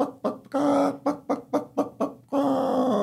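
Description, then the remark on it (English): A human voice imitates a hen clucking, starting with a drawn-out squawk, then six quick rhythmic bok-bok clucks, and ending in another long squawk. Fairly loud, with no other sounds. “The hen clucked.”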